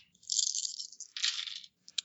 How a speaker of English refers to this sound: Oh, seven. That's a D8. Hang on, I rolled a D8 by accident.